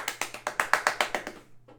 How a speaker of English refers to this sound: It has been officially renewed for season 2. So let's clap it up for them.